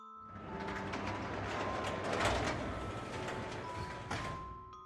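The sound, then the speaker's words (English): A garage door opening, a steady mechanical grinding and rattling of gears and chain that runs for several seconds, with a sharper clank near the end. “I heard the garage door open.”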